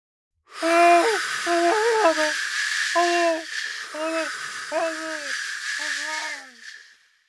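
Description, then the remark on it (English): A man drowning in a rushing river: his choked, gurgling cries come in about six short broken bursts over a loud, steady rush of water. “Drowning man in river.”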